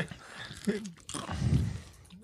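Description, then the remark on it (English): Crunching as someone chews Reese's Pieces candies, with a few irregular crisp bites over a couple of seconds and some muffled vocal sounds mixed in. “Enjoy the sound of me crunching on delicious Reese's Pieces.”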